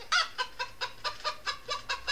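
Hens cluck in a steady, quick series of about nine short, bright bursts, fairly loud, with no voices present.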